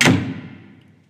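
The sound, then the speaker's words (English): A heavy apartment door on the 27th floor of a glass apartment building slams shut with one sharp, booming impact, then a low rumbling decay fades out over about a second. No voices are present. “I step back into the cool apartment, letting the heavy door slam.”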